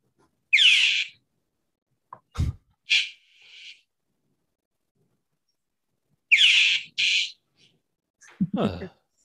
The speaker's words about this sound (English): I'm going to pull up this bird that I just filmed a couple hours ago. It sounded crazy, and it was on my roof. Sounds like ….